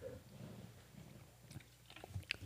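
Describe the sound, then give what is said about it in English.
Close-up open-mouthed chewing, with wet smacking and irregular crunchy clicks that grow busier toward the end; no one speaks. “Just chew like work a cow.”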